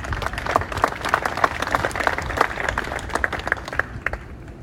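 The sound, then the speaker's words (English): Steady applause from a modest outdoor crowd of golf fans at the first tee of a senior players' tournament, as Corey Pavin of Dallas, Texas, is announced to play. Many hands clap at once in a dense, crackling patter that holds fairly even for several seconds without cheering or voices. “And here's a little clip of audio that I took to kind of give you an idea of what the fan noise is like on the first tee for the senior players.”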